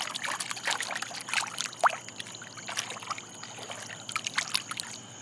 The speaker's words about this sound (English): And I'm actually sitting chest deep in the backyard pool. And Zoe, my dog, is out here with me. She's curious. She's very curious. And you can hear the water.